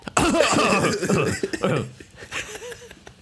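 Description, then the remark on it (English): A woman makes a run of loud, deliberate-sounding coughs and throaty vocal noises to cover up a fart over the first second and a half, then quieter voiced sounds trailing off. “I just have a bad cough.”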